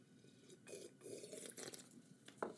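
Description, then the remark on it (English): Someone sips coffee, a few soft slurping, liquid sounds over about two seconds, ending with a small click, with no talking. “Hold on. Coffee sip.”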